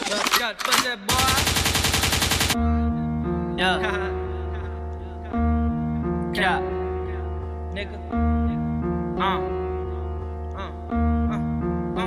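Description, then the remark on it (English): A DJ gunshot sound effect opens the track: a couple of sharp, loud bangs, then a rapid rattling burst of fire lasting about two seconds, before a steady music beat takes over. “Lakewood means rewind, a gunshot means forward.”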